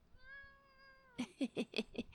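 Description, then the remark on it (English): A pet cat named Tara Jr. Jr. gives a long, steady, tonal call followed by a quick run of five short, bright meows in an even rhythm, fairly loud, with no one talking. “All right, ladies and gentlemen, and cats of all ages, cool cats, stray cats, fat cats, crazy cats, cats, cats, cats, and Tara Jr.”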